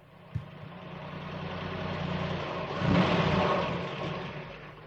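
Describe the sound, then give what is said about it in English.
The mayor's car engine idles with a steady low rumble, then revs up to a louder roar and gradually fades as the vehicle drives away toward the post office. A brief click sounds near the start. “So let's get back into the mayor's car.”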